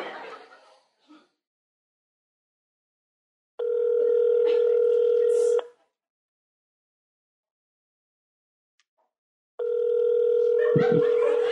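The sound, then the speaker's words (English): Two long, steady electronic ringback tones of a dialed phone call, each about two seconds with a long silent gap between, sounding clear; brief soft chuckling precedes the first ring and overlaps the second. “It's ringing. That's a good sign.”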